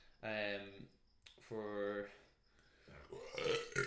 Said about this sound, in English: So I think what he meant by that burp. Yeah, that's exactly what I meant.